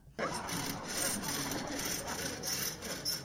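A saw rasps steadily through wood in rapid back-and-forth strokes as a man saws a woman in half, fairly loud, starting abruptly and continuing without pause for a few seconds.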